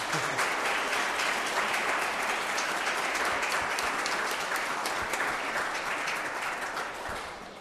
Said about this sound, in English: I thought your mums and dads weren't going to give you a round of applause there. I don't know what that was about.